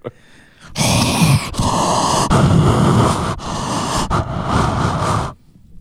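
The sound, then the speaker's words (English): Heavy, loud breathing right up against a microphone from a person drinking scotch that is hurting their chest: several long, rough, rushing breaths follow one another with brief breaks, harsh and close, with no talking. “Why are you breathing so much in the mic?”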